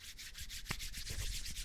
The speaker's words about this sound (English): Oh, snap. He's rubbing his hands together. My hands together. Hold on. Let me see if you can hear it.